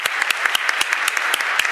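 An audience applauds the students as they leave the stage, many hands clapping in a dense, crackling wash with a few sharper individual claps popping out above it, fairly loud and with no voices over it.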